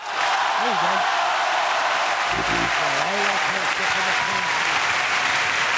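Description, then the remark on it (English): Sustained applause from a crowd, dense and steady clapping filling the whole few seconds at a fairly loud level, with faint voices murmuring underneath. “You got to do the applause thing.”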